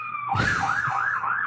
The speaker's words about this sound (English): Oh, you hear the sirens? It's just my neighborhood. My neighborhood's very colorful.